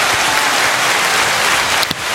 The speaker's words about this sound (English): So let's give that a round of applause.